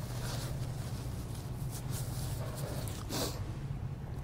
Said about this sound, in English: look, I need to blow my nose, excuse me. This is where you edit the video, okay? Give me a second.